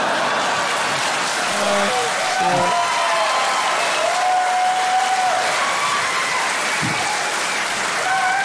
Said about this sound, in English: I love that applause.